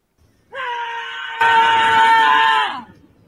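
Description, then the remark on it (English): On a New York City street, a woman lets out one long, loud, sustained scream that holds a steady high pitch for about two seconds, then trails off downward, while people walk by and street noise rises behind it partway through. “She just, that's her screaming, and all these people walk by, and she goes, if they looked at me screaming, then they're not a real New Yorker.”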